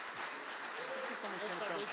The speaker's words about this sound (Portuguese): Dê um glória a Deus e aplauda ao Senhor.